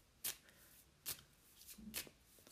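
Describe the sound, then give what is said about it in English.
A deck of cards being shuffled before drawing the last card, with three quick, crisp riffling bursts spaced about a second apart, fairly soft, with no one talking. “And we'll just shuffle for the last one, I guess.”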